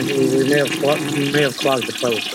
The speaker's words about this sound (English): And the toilet probably has already flushed several times.